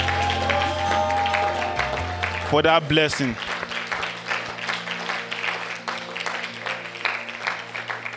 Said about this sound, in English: Can we all appreciate and clap for that?